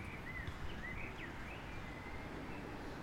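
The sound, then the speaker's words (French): Faint birdsong in woods among parks and green spaces: a few thin whistled chirps rising and falling over a steady low outdoor rumble, with no one talking. “On entend les oiseaux un peu chanter, je ne sais pas si ça passe dans le micro.”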